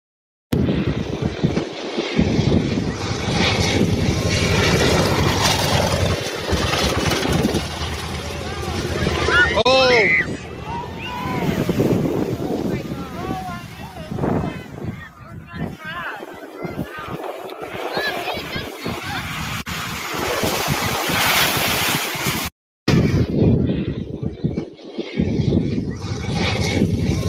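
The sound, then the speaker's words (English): A World War II propeller plane roars loudly overhead, its engine pitch sweeping as it passes, then the rough splashing rumble of it crash landing in the water near people on a beach, with an excited crowd murmuring and shouting throughout. “So on a lighter note, this is a plane crash that actually ends well and gives people kind of a little show. It's a World War II plane.”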